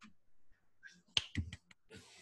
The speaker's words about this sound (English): Little golfer clap right there.